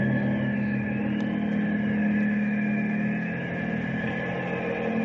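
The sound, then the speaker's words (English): A helicopter's steady, droning engine hums overhead, with a low tonal rumble and constant loudness throughout, no voices. “It is a plane. It sounds like it's coming right over us.”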